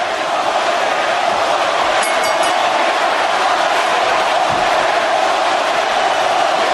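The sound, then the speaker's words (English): A loud, steady roar of a wrestling crowd at the Fleet Center in Boston, on its feet cheering for Hollywood Hulk Hogan, a dense wash of voices and noise that holds constant throughout with no pauses or individual voices standing out. “This crowd at the Fleet Center in Boston on its feet for Hollywood Hulk Hogan.”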